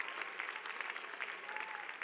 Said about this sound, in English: Give Jesus a resounding clap of praise.